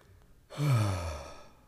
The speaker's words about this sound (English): That's a yawn.